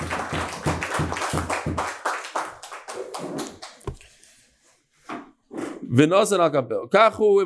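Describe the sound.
Quick, steady handclaps ring out for about two seconds, followed by talking and a few loud, wavering vocal whoops near the end.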